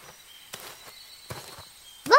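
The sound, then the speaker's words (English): A few irregular crunching footsteps on forest ground over a faint steady high insect or bird hum, ending with a sudden louder bird-like call. “Let's follow the footsteps to see if we can figure out what's going on.”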